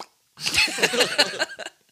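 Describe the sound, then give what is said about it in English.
A voice imitates poop splashing into a toilet: just over a second of wet, gurgly mouth noise ending in a few quick plopping bursts, fairly loud, with no speech. “Let's do more poop splash noises.”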